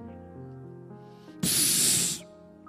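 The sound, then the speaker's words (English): A voice mimics a skunk's spray with one loud, sharp hiss lasting under a second, set against soft, sustained musical tones that play before and after it. “Anger is like a skunk. We spray our stinking temper on anyone who gets in our way.”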